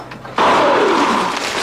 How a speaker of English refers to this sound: Whoa, an airbag! The new family truckster.